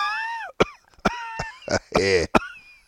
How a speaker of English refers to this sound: I've just been here trying not to cough too much.